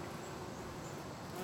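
Bees buzz in a steady, continuous drone, fairly loud, with a constant hum throughout and no voices.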